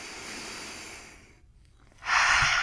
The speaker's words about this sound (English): Okay, I'm gonna breathe, and I'm gonna calm down, right? Wait, let's breathe with me, ready? One, two, three.